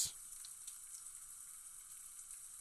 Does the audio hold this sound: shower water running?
yes